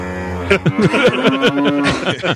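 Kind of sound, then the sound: animal, cow mooing sound effect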